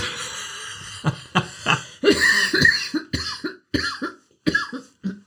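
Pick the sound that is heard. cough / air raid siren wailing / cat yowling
cough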